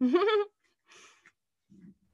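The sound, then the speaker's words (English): A dog lets out a loud, rising whine-like yelp, followed by a brief breathy huff and then a short, low grumble, with quiet gaps between each sound and no talking. “My dog is never this loud. Yeah. Excuse her dog.”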